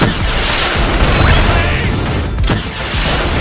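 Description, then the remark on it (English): A loud, dense video game rocket launcher (RPG) explosion with a heavy low-end rumble and crackling debris, followed by a sharp burst around the middle and continuing chaotic combat noise, with no voices. “Server, give them some rocket launchers or something. All right, grenades out. RPG!”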